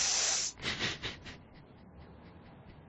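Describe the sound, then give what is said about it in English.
A voice imitates the fizzing hiss of a black snake firework: one long, steady breathy hiss, then three shorter, softer bursts that trail off into quiet. “Well, I was gonna say it's like the fireworks, you know, that black snake.”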